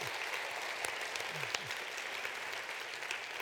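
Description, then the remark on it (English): An audience claps steadily, a dense crackle of many hands blending into a continuous wash of applause at moderate volume, with a few sharper individual claps popping out. “Before you clap too long, we're still 5% behind where we need to be.”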